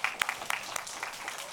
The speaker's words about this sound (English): We know these things. Yes, we can clap for that.